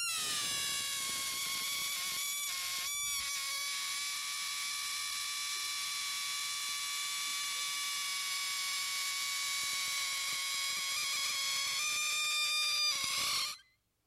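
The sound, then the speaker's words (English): A loud, continuous squeal of air escaping a stretched balloon neck, holding a shrill, buzzy pitch for about thirteen seconds, wavering slightly and rising near the end before stopping abruptly. “Just like this balloon wants to find an outlet.”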